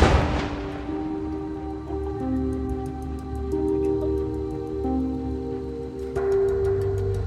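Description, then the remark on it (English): A loud, sharp blast from an explosive charge launching a car tire and wheel about 30 meters into the air bursts out at the very start, then gives way to a lingering low rumble and steady ringing tones for several seconds, with no voices. “The sound of this explosion, that the force of it is surprising.”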